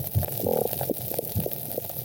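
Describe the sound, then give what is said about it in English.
Low underwater grunts, short chirps and soft pops from reef fish, including damselfish, recorded on the reef, scattered irregularly over a steady hiss of fine high crackling; no voices. “And those are the fish sounds that we've got from on the reef. Some of those damsel fishes in there making sounds.”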